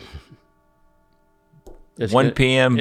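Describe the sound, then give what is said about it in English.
A clock that chimes every 15 minutes chimes the hour, with steady, lingering bell tones hanging in the air before brighter, louder chime notes strike near the end. “Anyway, no, it's going to chime every 15 minutes, too.”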